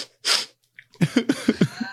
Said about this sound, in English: When you mention video games, you hear … sniffle.